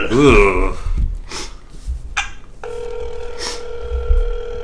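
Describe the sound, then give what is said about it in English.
A brief voice and some breathy noises, then a steady electronic phone tone starts up and keeps sounding, a call ringing out with no one picking up. “This has been Blaze does not pick up the phone.”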